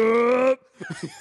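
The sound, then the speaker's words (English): A person imitates the yell of Colossus from the old 1990s X-Men arcade game: one loud, steady, half-second shout with a strong buzzy tone, cut off abruptly and followed by a few short, softer vocal bursts. “At one point, … does a Colossus yell. Can you demonstrate?”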